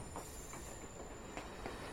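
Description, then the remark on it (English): A train from Shin Hamamatsu rumbles steadily, with faint rhythmic clacks from the wheels and a thin, high whine running over the rumble as it drops speed after coming out of a tunnel and pulls in to stop at a station, Kisaragi Station. “Looks like we're finally stopping at a station.”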